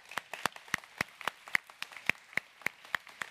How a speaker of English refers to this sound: We celebrate your presence here with us today. And the way we do that is with a hand clap. Could we bless our first-time guests?